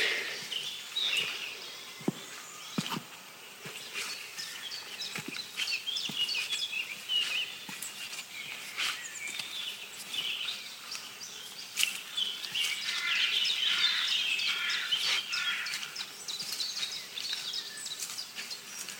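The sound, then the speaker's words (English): A busy chorus, mostly blackcap song, mixed with wrens, a chiffchaff, wood warblers in the distance and other warblers: overlapping bright, high warbles and rapid trills carry on without pause, with no talking. “But most of this bird song is black caps.”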